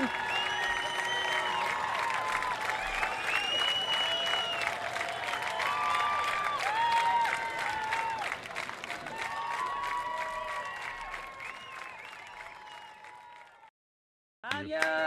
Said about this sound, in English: standing ovation continues here in the rain at Newport